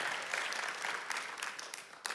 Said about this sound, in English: And before you see the cartoon clip, let's give our creative team a big round of applause, because they're investing hours and hours and hours and hours and hours. Thank you so much, your crazy team.